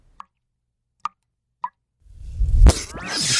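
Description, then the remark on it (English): Three sharp, evenly spaced drips of seltzer water plop in quiet, then a loud, fizzy splash of seltzer water gushes and keeps spraying onto a person to the end. No voices. “You fool, that wasn't virgin's blood. You've revived me with seltzer water.”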